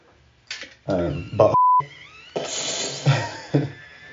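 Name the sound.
censor beep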